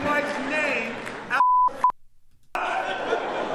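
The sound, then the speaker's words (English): A steady, high-pitched censor bleep, used to censor a swear word in commentary on the Will Smith Oscars slap, cuts in briefly between stretches of chatter, followed by a second, shorter blip and a moment of silence before the talking resumes. “I hit the wrong button. I was trying to beep it.”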